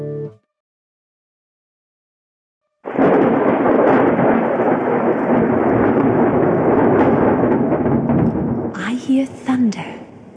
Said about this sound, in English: I hear thunder. Hark, don't you? Hark, don't you? Pitter patter raindrops, pitter patter raindrops.